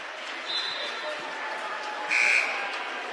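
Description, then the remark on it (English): A basketball crowd, the Patriot faithful, applauds with a steady, dense wash of clapping throughout, and a short, high whistle blast cuts through it near the end. “It's a nice hand from the Patriot faithful. Great crowd on hand tonight.”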